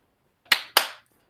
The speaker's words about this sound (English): And as soon as the second clap hits, Ka, just his entire body ignites into flame.